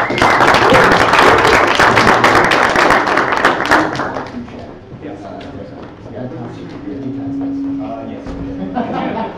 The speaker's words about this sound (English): how about we give a round of applause for those guys. Thank you guys very much. Let's give these guys one more round of applause.